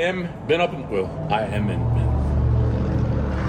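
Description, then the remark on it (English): A boat engine drones steadily and loudly, rising into a constant low rumble after a few seconds of voices talking over the start. “I have been up in the boat for quite a bit today. This is your first time up in the boat, right?”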